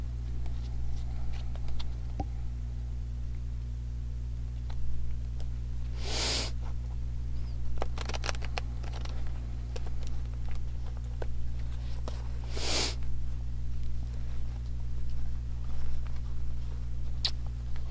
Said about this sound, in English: Ooh, the cards are having a hard time shuffling. So interesting. One more time.